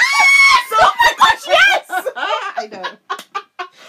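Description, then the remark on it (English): Loud, high-pitched excited screaming bursts out, with shrill squeals and laughter-like shrieks that break into quicker, choppier vocal bursts as they fade. “We apologize for the screaming.”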